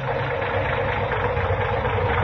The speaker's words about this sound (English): Say, that engine of yours sounds like real tired iron.